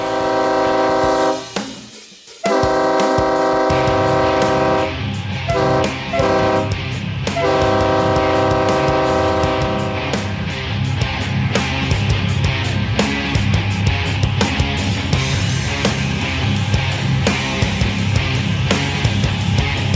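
A train horn blows loud, sustained chord-like blasts with a short break, then gives way to the steady rumble and rhythmic clatter of the train getting underway. No one speaks.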